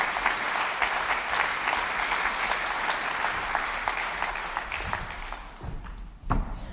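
An audience claps steadily for about six seconds, a dense patter of many hands that thins out toward the end, followed by a soft thump.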